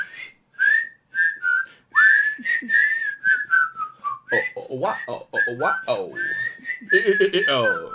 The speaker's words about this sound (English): Unison whistle.